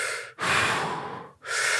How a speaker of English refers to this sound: So what they were doing is they were grabbing the breather, yeah. just breathing at one in one, lowest setting